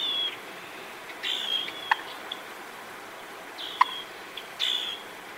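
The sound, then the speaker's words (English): A turkey alarm call: a few soft, thin, high-pitched notes repeated at irregular intervals, with a couple of sharp brief clicks in between. Quiet overall, with no talking. “And here's an alarm call.”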